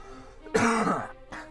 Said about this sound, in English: I coughed. I almost died there.